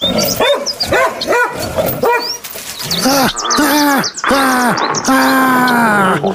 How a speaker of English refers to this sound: Oh, wow. Cool dog. Does he bite?